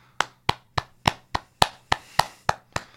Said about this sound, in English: So I'm just going to do a few audible claps on behalf of us.